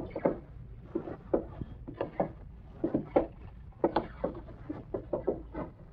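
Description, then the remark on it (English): A closet door being eased open, giving a string of soft wooden creaks and knocks in an uneven rhythm over several seconds, fairly quiet, with no one talking. “Look at that closet door. Hey, what are you... Hey, there's a piece of somebody's coat sticking out of the crack. Open that door.”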